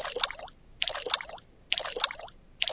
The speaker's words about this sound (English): Then we have water dripping.